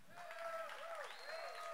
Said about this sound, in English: I see a lot of women clapping now, not many men. I'm a little worried here. Come on now. Let's try it again.